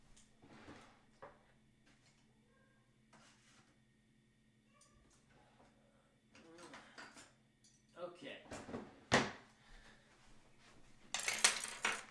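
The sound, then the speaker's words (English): Items clatter and scrape as someone rummages through a drawer to grab a couple more pens, with scattered knocks building to a louder burst of rattling near the end. “If you stay there, I'll grab a couple more.”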